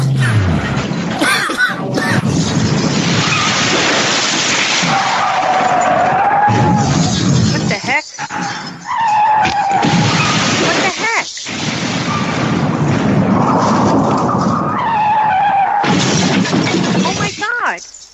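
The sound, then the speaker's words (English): A car crash: a loud, continuous roar of car tires screeching in several drawn-out squeals, broken by heavy crashing impacts. The whole sequence is harsh and chaotic for nearly twenty seconds. “I was just talking to somebody who just got into a car crash.”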